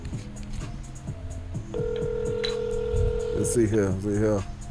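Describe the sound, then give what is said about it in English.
A quick run of electronic dialing tones steps through different pitches, then a long steady ringback tone sounds on the line before a voice briefly speaks over it. “Nobody want to answer their phone.”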